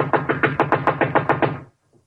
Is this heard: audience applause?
no